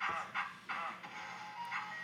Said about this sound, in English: They're all dancing to the ice cream truck.